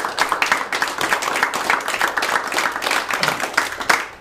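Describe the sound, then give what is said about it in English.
An audience in church gives one more hand clap for God, a dense, steady burst of overlapping claps, loud and crackling throughout with no voices standing out, sustained for several seconds. “Give him one more hand clap and I'll show you.”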